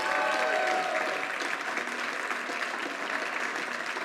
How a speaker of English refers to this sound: And so we give my wife, my kids, a big hand clap this morning.